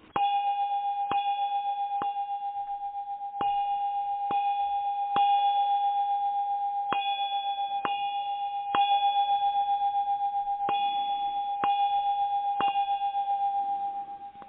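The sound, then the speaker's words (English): A clock in a castle strikes midnight, chiming twelve times, each strike a bright metallic clang over a steady ringing tone, falling in uneven clusters of three with short pauses between groups. No voices are heard. “Livonia Dithers is in deep trance as the clock strikes 12.”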